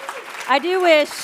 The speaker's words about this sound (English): Cheer my mom for sure. Yay for moms.